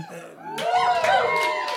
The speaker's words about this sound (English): We didn't even ask for that cheer. Yeah, that was unasked for.